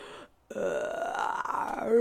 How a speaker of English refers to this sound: Did you hear that? It's a good burp.